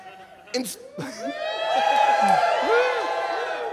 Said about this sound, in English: Everyone cheers.